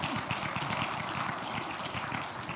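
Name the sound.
audience applause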